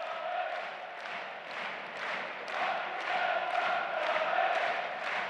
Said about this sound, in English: Listen to the crowd. It's a constant barrage.